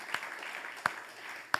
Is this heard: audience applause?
yes